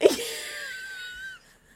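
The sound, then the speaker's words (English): A voice imitates teeth sucking: a sharp initial burst followed by a thin, squeaky, whistling hiss that holds steady for over a second, then cuts off. No words are spoken. “And then she's sucking her own teeth.”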